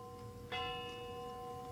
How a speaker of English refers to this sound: What's that? It's a clock chiming.